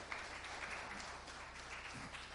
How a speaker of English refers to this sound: Come on, big round of applause